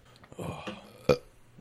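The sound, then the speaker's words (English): A low, gurgling burp after eating meatballs rumbles for about half a second, followed by a brief sharp click, with no talking. “Yeah, God, burping up the fucking meatballs, dude.”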